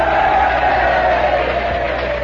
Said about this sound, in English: Let's give Robert Moses a cheer. Come on. Pray for Moses.